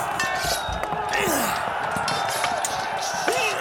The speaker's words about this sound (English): Swords clashing. Shields slamming.